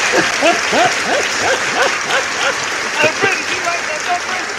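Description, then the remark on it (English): Loud, sustained applause from a crowd, a dense wash of clapping with cheers and whoops rising and falling throughout. “That applause, it makes me feel whole right now.”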